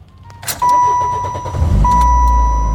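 A car engine is cranked and catches in a driveway, settling into a steady low rumble, preceded by a sharp click and accompanied by a continuous electronic dashboard tone.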